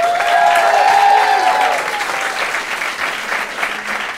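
A live debate audience votes on whether Twitter and Facebook should severely limit online speech, bursting into loud applause mixed with whoops and cheers, the clapping dense and steady before easing slightly toward the end.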